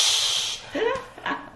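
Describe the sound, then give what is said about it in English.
A voice makes a sharp, loud "pssshh" hiss imitating breast milk spraying out in a burst as a breastfeeding baby is taken off the breast. It fades after about half a second into a few soft voiced sounds. “I had milk spraying. Literally, I took Charlie off and the milk went like that.”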